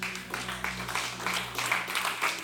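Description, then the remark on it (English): A crowd claps its hands together in steady, overlapping applause, a dense rustling patter of many claps with a low hum beneath and no voices, giving a hand clap of praise to God for the worship team. “Can we just give a hand clap of praise to God for the worship team?”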